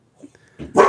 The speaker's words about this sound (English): This is real life, y'all. We got dogs.